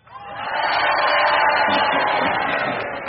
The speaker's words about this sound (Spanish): A ver, vamos a hacer una experiencia. Que grite solamente la gente de afuera.